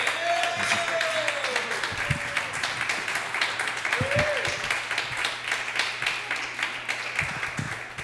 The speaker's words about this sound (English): Everyone. Start clapping. Start clapping right now for Brandon Kiefer.